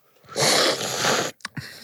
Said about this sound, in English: So I'm doing the same process. I'm slurping like bad soup.